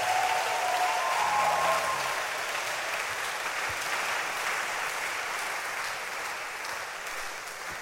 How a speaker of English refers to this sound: Clap your hands for Jesus once again.